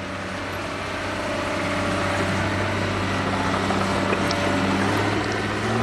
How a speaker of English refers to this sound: At the southern edge of the bay, in the Alviso Slough near San Jose, amphibious dump trucks working on the restoration dig out mud that keeps sliding back into a channel.